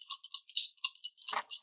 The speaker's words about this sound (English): That sounds like so much dice. So many dice.